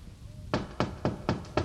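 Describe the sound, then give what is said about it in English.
Five firm knocks on a wooden door, evenly spaced in a steady rhythm, fairly loud, following a brief quiet moment. “Anyway, sweetie, just knock over that door there for me now.”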